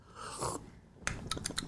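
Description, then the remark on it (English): A voice imitates a man loudly slurping a cup of tea: first one drawn-out, hissy suck of air, then a quick run of about five short, rasping slurps. No words are spoken. “He's quite chubby, really hairy, but every time he gets a cup of tea... Slurps. He's like this, he goes...”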